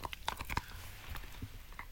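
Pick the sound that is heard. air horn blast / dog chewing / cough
dog chewing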